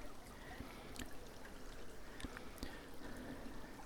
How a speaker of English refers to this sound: crossing a footbridge over Staticum Creek.